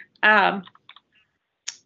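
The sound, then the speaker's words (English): A brief burst of voice, then a few sharp, scattered clicks of keys tapped on a computer keyboard by an unmuted participant in an online meeting, light, with quiet gaps between them. “I think I hear someone typing on there.”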